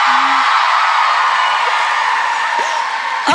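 A loud, sustained wash of crowd noise, with many voices cheering and whooping together at a steady level and a few brief shouts rising out of the roar.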